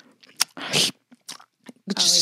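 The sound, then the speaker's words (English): Loud crunching of potato chips right against the microphone, a handful of crisp, irregular bursts separated by brief pauses. “He's doing work on the computer. Open a bag of chips. And it's just me.”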